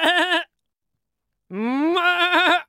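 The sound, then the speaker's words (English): A goat bleats twice: a short cut-off cry, then after a pause a longer, loud, quavering bleat that rises in pitch and wavers throughout. “A goat needs about 2 to 4 pounds of hay per day.”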